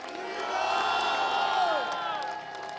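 An audience shouts "freedom" together as a shout to the Lord, many voices merging into one loud, sustained roar that swells for a couple of seconds and then eases off slightly.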